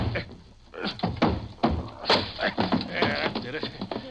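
A few heavy thuds and a cracking bang as Mr. Dizelle's locked office door is busted open, mixed with muffled voices and scuffling.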